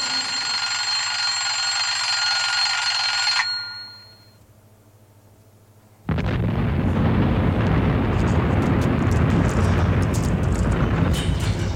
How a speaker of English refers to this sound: Alarm clock. Well, that will come in handy.